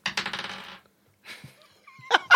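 Small hard dice clatter and rattle briefly across a surface, followed by a couple of sharper clicks and a ringing tap as they settle; fairly quiet, with no voices.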